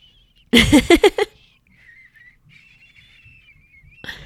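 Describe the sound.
A person imitates a seagull call: one loud, strained squawk that breaks into four quick pulses, followed by a faint, thin whistling tone that lingers quietly.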